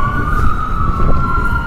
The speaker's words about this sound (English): A lot of sirens today. What else is new?